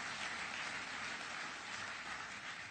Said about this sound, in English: That's the good news. That's the good news. I end up with a round of applause.